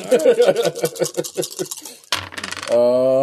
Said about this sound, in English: needs to roll his dice.